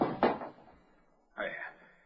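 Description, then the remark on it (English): A metal basin is knocked to a hard floor and clatters: two quick crashing hits, a fading rattle, then another clanging bounce that rings briefly before settling, fairly loud. “I knocked the basin to the floor.”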